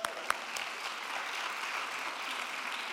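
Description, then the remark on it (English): An audience claps steadily throughout, a dense, even wash of many hands with a couple of sharper individual claps standing out near the start. No voices come through the applause. “These are just two examples, and we just want to applaud you.”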